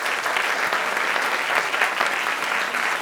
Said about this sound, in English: A round of applause again for them.